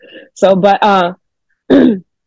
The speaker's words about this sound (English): You know, for one, I'm sorry if I keep clearing my throat. I'm kind of sick.